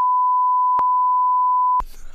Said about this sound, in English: That's a hard beep. That's a hard cut.